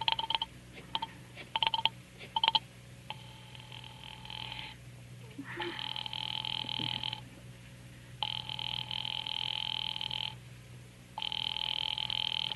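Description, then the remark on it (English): A telephone rings on the line as an operator connects a call to the police department, in long repeated bursts separated by short pauses, with a steady electronic buzz and faint clicks before the ringing settles in, no one speaking. “Ringing the police department.”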